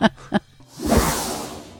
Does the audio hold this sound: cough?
no